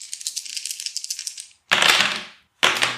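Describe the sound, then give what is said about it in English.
A quick, light clicking rattle for a second and a half, then two louder clattering tumbles of dice across a hard table, with no talking, as two sets of dice are rolled for damage on a critical attack in a tabletop game, coming up 18 and 23. “So it's 18 on the first set of dice, then 23 on the next.”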